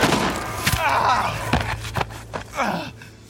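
A rapid volley of gunfire as a group of men opens fire on three deputies: four or five sharp, loud cracks fired in quick, uneven succession, with muffled shouting or groaning voices between the shots.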